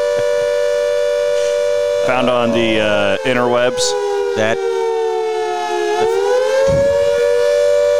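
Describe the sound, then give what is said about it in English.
A loud World War II air raid siren wails steadily at a sustained pitch with a slight waver throughout, while a voice briefly speaks over it near the start. “That is a World War II air raid siren.”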